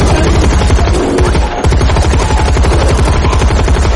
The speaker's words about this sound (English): Radek opens fire with the automatic rifle, emptying the entire clip into the bear's freakishly deformed head.